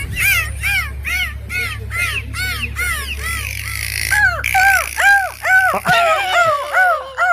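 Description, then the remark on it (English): A person imitates a dolphin like Flipper: a quick run of short, rising-and-falling high-pitched chirps, then several louder, longer arching whistles, all over a steady low hum with no talking. “Let's get your best dolphin. Have a listen to this.”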